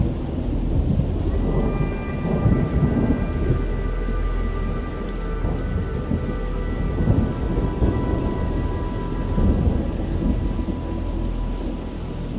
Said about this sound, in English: There was lightning everywhere, types of lightning which are unique to tornadoes. They were just these little strips and bits of lightning connecting to the ground, and torrential rainfall, not unlike a hurricane, but with much more lightning.